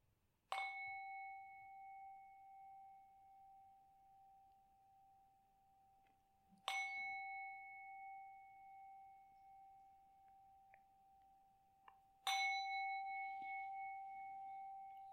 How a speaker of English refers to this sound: Okay, so we will finish off the meditation. Okay, so I'll ring the gong 3 times. So gently come out on the meditation.